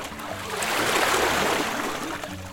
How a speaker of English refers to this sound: What is that sound? Is it water? Where is it coming from? The water is rushing towards me,